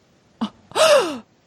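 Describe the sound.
A short intake of breath followed by a sharp, voiced gasp that slides downward in pitch, loud, with no talking around it.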